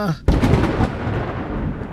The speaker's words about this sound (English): There was a brilliant flash of lightning, followed by a floor-shaking thunder.